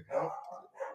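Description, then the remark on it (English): Dogs barking through holes in a fence, in two quick bursts, a longer bark followed by a shorter one, mid-pitched and moderately loud, with no talking over them. “our friends have joined the chat. We have holes in the fence for our friends to join us. Special guests. Hello, puppy dogs.”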